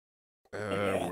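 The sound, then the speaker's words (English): After a brief silence, a dog lets out a low, rumbling growl while being fed Combos snacks; it starts abruptly and holds steady for a moment, fairly loud, with no talking over it. “Who brought this dog?”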